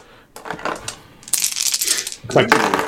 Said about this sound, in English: I'll just go through and roll all your dice for you.